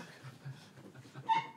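A dog lets out a brief, high whimper near the end, faint, over a soft rustling background with low murmuring.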